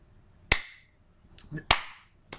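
Sharp hand claps, an unscripted clap that the performer put in himself: two loud, crisp smacks about a second apart, then a softer third one. A brief murmur of voice slips in just before the second clap.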